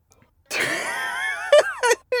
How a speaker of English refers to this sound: Do you hear him scream? Oh yeah, in the background. Screaming. Did you just hear off him? Scream. Way off camera.